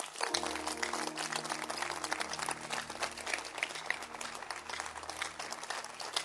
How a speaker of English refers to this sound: Now, please, everybody, just be quiet. No movement. This area alone. Clap your hands.